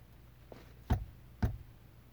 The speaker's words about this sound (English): Can you give us two knocks like this?